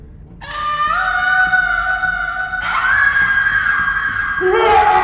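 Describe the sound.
A person's voice imitates three loud bellowing cries from inside a lair, one long drawn-out howl sliding upward into a higher strained wail and then a final rising yell, strong throughout.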